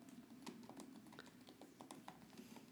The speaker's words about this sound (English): You can hear the wonderful clacking of my keyboard.